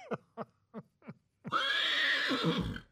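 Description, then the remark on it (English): Four quick hoof clops followed by a loud, drawn-out horse whinny with a shaky, trembling pitch that snorts and fades out, with no talking. “Actually, funny you should use the horse one.”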